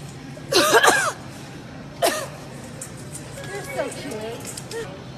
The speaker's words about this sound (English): Excuse me. And she was coughing on purpose.